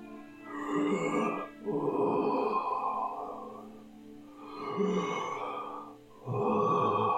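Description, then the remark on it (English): Heavy, labored breathing with deep, rasping grunts from an ancient gold dragon, in long slow cycles of roughly four breaths, loud with no talking. “Heavy, labored breathing.”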